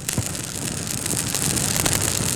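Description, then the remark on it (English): A bonfire crackles steadily, a dense hiss of burning broken by sharp, irregular pops and snaps, fairly loud throughout with no voices. “Here we are at the bonfire.”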